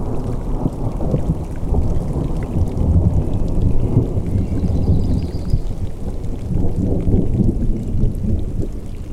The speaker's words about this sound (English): The clouds are gathering to the east. A storm is approaching.